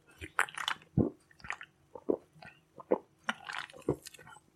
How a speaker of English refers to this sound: I'm going to have a sip of this LaCroix, and while you try to figure out why that is, hang on.